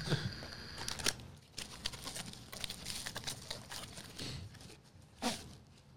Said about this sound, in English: Open the package.